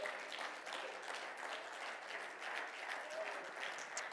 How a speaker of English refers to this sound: This is more precious than any of that, right? If you believe that, clap your hands tonight.